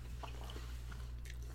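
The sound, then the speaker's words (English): Quiet chewing with a few soft, wet squishing bites over a steady low hum, no voices. “This is the ASMR munching part of the”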